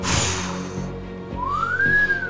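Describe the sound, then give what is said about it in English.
A single clear whistle slides upward in pitch and then levels off, ringing out loudly over a rumbling, noisy background with no talking. “Nah, nigga, that's whistling. That is whistling.”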